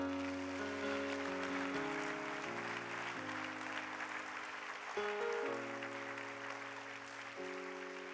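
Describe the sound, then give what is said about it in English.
An audience claps steadily throughout, a dense patter of many hands that never breaks, over sustained keyboard or organ chords shifting every second or so. No one speaks. “You can clap for that.”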